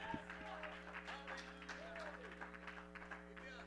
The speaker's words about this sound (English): Would you give God a hand clap of praise and a shout of victory?